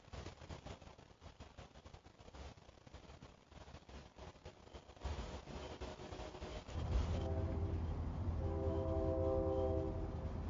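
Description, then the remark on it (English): A train rumbles past with a steady clattering roar that grows louder midway, then a long, sustained horn blares over the noise for the final few seconds. “There's a train.”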